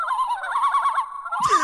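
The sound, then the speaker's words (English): A child's toy lets out a warbling, honking goose-like call, a rapid wavering squawk held for over a second before ending in a brief harsh burst. It is clear and loud, with no talking. “Is that a geese sound? Like, is that a Canada Goose sound?”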